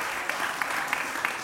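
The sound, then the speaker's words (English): A steady wash of applause from a church audience during a sermon, applauding themselves for trying: dense overlapping claps with a few sharper hits standing out at regular moments, sustained at an even level throughout. “Give yourselves a round of applause for trying.”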